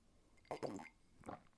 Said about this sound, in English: Sips water. Hold on. I'm talking so much. I have so much to say to you. I'm parched.